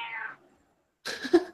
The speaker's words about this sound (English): Is that a cat?